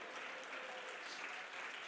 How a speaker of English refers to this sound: Come on, jump to your feet and clap your hands and shout, he can turn your life around.